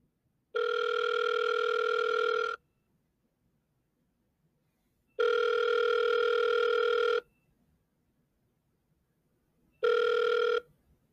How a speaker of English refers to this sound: He grabbed his phone and dialed a number.